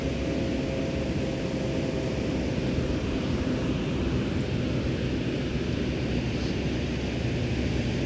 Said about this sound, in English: my body is telling me to stay here and come to the beach and listen to the ocean and love and be a piece of love and tell it like it is, which is hard. And be at peace with the water again.